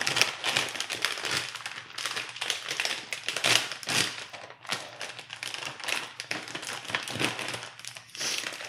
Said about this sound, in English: So let's start with the kettle corn. See if I can make more package noises into the mic.